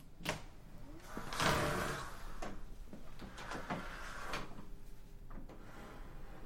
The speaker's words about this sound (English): So I stumbled upon this fire door. It was like on an evening. There was nobody in the building, which allowed me to get these very subtle brushing sounds from the door.